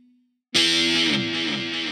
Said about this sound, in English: What do you got there? This head is a Catalinbread Belle Epoch tape delay.